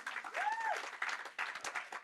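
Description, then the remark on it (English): A crowd claps steadily, a dense patter of many hands filling the space at moderate loudness, with a brief whistle or cheer rising above the applause near the start. “Come on, round of applause for the woman.”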